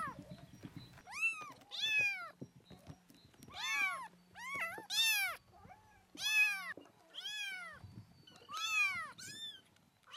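Several kittens meow in high, thin bursts, overlapping calls coming in quick clusters over ten seconds, fairly loud, with soft rustling and faint low noise underneath.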